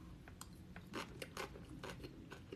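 Crunchy chewing of leftover nachos, a steady run of sharp, brittle crunches repeating every fraction of a second, with no talking.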